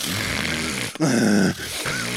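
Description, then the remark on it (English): A voice imitates loud snoring with rough, low, buzzing grunts in a few quick bursts, separated by brief breaks, with no words spoken. “they're snoring a lot”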